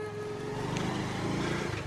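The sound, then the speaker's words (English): A motorbike engine hums steadily, a continuous low drone with a slight rise in revs, set against a wash of busy street traffic in Kathmandu, Nepal. “With Kathmandu traffic being what it is, the best way of getting around town is on motorbike.”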